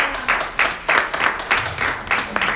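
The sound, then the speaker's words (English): A crowd applauds steadily as a hand clap of praise to God, many hands clapping in dense overlapping waves that swell and dip in a loose rhythm, loud, with no talking over it. “Come on, give God a hand clap of praise.”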